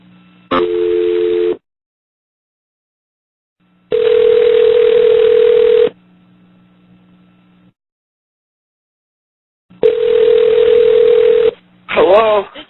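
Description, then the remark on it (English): A telephone ringback tone sounds through the line during an outgoing call, as an emergency call center calls back a 911 caller. It comes in steady two-second bursts separated by silent pauses, three rings in all, before a voice briefly picks up at the end. “Me, I'm calling back. Probably repeatedly until I can get somebody on the phone.”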